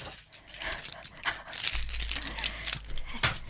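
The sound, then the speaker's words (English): Keys jingle and clatter as a person who has just come home from work and walked in the door sets them down, a bright metallic rattle in a few quick bursts, with some soft high-pitched yipping sounds mixed in. “I'm just putting my keys down.”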